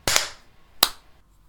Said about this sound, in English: Those were three distinct claps.